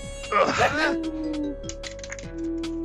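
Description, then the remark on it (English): A die drops and clatters on a hard surface, making a quick cluster of light, sharp clicks that taper off, with a steady tonal hum in the background. “Oh, shoot. I dropped a dice.”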